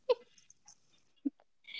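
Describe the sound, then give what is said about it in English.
A voice imitates a light nasal snore: a couple of brief, soft snorting breaths pushed through the nose, fairly quiet, with a faint hiss at the end. “And it doesn't come out of my mouth, it only comes out of my nose.”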